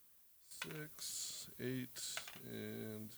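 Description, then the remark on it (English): A single die is rolled three times across a hard surface, clattering in a few short bursts of rattling clicks, with some voice-like sounds mixed in. “I'll just roll this one three times.”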